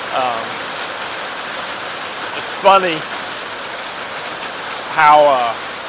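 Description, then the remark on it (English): Heavy rain pours down steadily on a back porch in a dense, continuous hiss, while a person speaks briefly in short bursts over the downpour. “It is pouring down rain, so I thought I would try to get a podcast in the rain. I know it's loud.”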